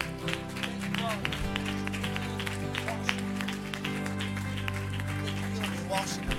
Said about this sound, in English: Come on, can we go to hand clap today for his broken body and for his blood? Come on, just say, thank you, Jesus. Give me a hand clap real quick.